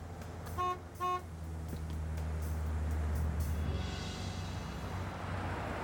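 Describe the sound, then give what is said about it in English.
A tow truck horn gives two quick, loud honks, followed by a steady low engine rumble that carries on to the end. “Hey, a tow truck.”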